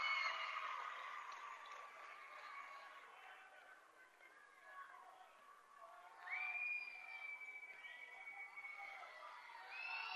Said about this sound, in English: They're trying to make some noise to distract Line. It does not work because he hits both free throws.